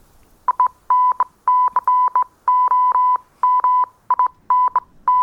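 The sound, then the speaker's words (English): A rapid run of steady, mid-pitched electronic beeps in uneven clusters, signalling an incoming transmission, sounding clearly on its own with no voices over it. “General, we have an incoming transmission.”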